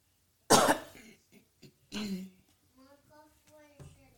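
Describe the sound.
A sharp cough into a shirt bursts out, followed by a second muffled cough about a second later, with some brief murmured talk trailing after.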